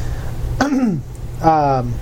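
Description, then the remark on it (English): Two short throat-clearing sounds, voiced and gravelly, separated by a brief pause, with a faint low background hum and no spoken words. “very cough today.”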